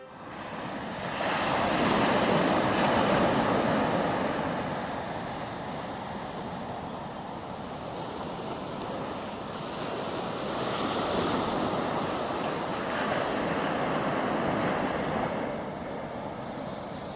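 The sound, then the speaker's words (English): Waves roll onto a beach in a steady, continuous wash, swelling and easing in broad surges every few seconds, with some wind noise in the background and no voices. “The sound of waves rolling on shore along a stretch of coastal beach.”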